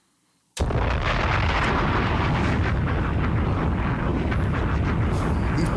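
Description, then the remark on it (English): After a brief silence, a bomb explosion sound effect erupts suddenly and stays loud, a dense roaring rumble with crackling debris that fills the remaining five seconds without fading. “Bombs!”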